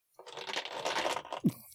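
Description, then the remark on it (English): A quick, dense clatter of many dice tumbling and rattling together across a surface, ending with a heavier knock, fairly quiet, with no talking. “That was a lot of dice.”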